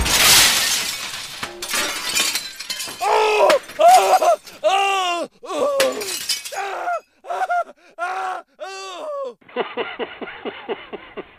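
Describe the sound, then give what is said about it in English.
A loud crash of falling camera equipment with shattering glass bursts out at the start, then a voice wails and groans in long, dramatic cries, ending in a rapid stuttering series of short sounds. “I'm going to go bankrupt or die when all this camera equipment fails on me and I perish under 13 balls. under 13 tons of metal, plastic, and glass.”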